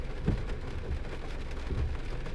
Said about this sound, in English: Do you hear the rain in the background?